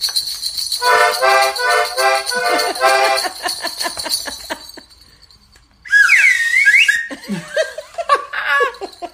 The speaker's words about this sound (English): I grabbed the slide whistle. Is it called a slide whistle? I think so.